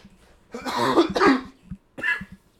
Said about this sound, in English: Sorry about that. No. Bro, I've been coughing this whole time, man.